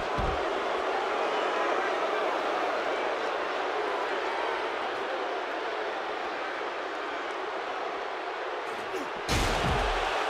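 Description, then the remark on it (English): A steady roar of a large crowd fills the air at a wrestling match between Bret Hart and Ted DiBiase, then near the end a single loud, heavy metal chair strike lands with a sharp thud. “Again with that chair.”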